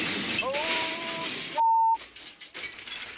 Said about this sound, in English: I think we got a car accident on the cross.